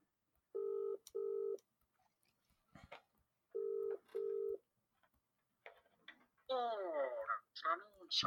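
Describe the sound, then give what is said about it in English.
A phone call rings out over a speakerphone: two double-pulse ringback tones with pauses between, then a voice picks up and begins talking. “Use your phone, a friend. Right, speaker. Here we go.”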